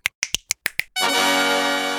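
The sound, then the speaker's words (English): Six crisp finger snaps in a quick, slightly uneven run, followed at once by a loud, sustained bright chord that rings steadily to the end. No one speaks. “Time for 10 new snaps.”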